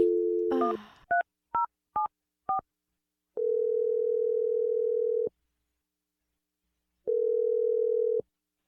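A telephone dial tone gives way to four quick, evenly spaced keypad beeps, followed by two long ringback tones separated by a pause of silence; clear and close, with no voices.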